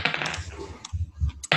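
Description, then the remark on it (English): Dice, rolled twice with advantage for a constitution saving throw, clatter and tumble across a hard surface in a quick burst of sharp clicks, then settle with a few softer low thumps and one last rattle at the end. “So I'm going to roll.”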